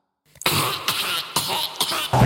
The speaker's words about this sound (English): I know you're faking it now because that's just a fake cough.